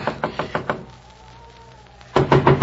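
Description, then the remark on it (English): Someone knocks firmly on a wooden door in the snow, trying to wake the old man inside: two quick bursts of about four raps each, separated by a short quiet pause. The knocks are fairly loud, with no voices. “Come on, Bauer, open up the door.”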